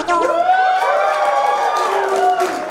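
crowd cheering

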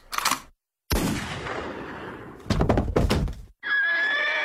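horse neighing

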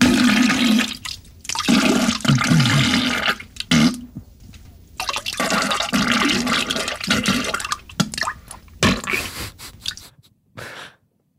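toilet flushing

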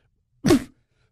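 cough

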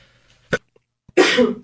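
sneeze

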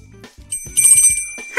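bell ringing

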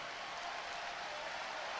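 arena crowd standing ovation

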